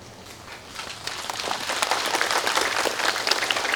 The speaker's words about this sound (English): Why are you clapping? They just want to tell me that they understood.